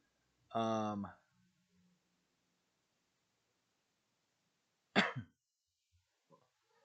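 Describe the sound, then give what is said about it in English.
A voiced throat-clearing rumble is followed a few seconds later by a sharp cough, with near silence between them and a faint rustle at the end. “Well, thankfully, by the time I got done coughing, I was able to find it.”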